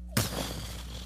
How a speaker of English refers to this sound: It's sucking all the oxygen. For a split second, there's a vacuum. And so a bomb actually sounds like that. It's not just an explosion. It comes in and everyone knows and your heart stops.